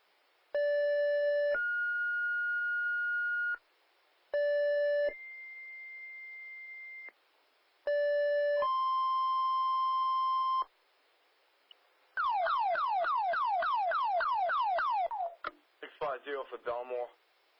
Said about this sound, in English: You know, it's the chiefs, it's the heavy rescue tones, probably it's EMS tones, and then it's a dispatcher comes on and the whole thing happens in less than 30 seconds.